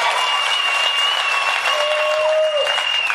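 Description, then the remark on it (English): A crowd applauding steadily, a dense wash of clapping that stays loud and even throughout, with a few thin whistle-like tones riding over the noise. “Listen to the crowd.”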